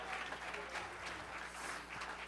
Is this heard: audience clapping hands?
yes